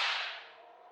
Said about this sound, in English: As I write this, I hear in the courtyard the rolling of heavy wheels and cracking whips.